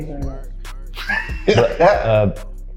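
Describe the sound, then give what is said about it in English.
A sneeze bursts out in two quick, voiced blasts, a breathy intake followed by a sharp, fairly loud release over a steady low hum. “Bless you.”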